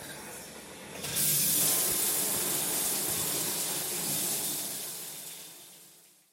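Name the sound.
shower water running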